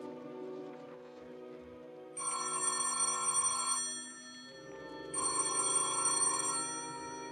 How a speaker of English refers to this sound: The telephone sounded like it was ringing miles away.